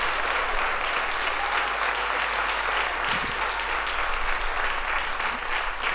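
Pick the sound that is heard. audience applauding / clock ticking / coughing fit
audience applauding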